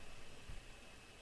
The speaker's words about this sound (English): Yeah, we're having phone interference. I think it may be just a bad connection at this time. We're going to reconnect. Yeah, I think he just dropped.